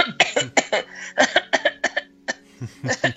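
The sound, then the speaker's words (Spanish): A voice imitates a run of forced, staged coughs, as cinema-goers coughed to hide their crying, about a dozen short bursts in quick succession with brief pauses, fairly loud, no other speech. “Así que, no, güey, la gente estaba llorando, pero no querían como llorar. Empezaron a toser, así de...”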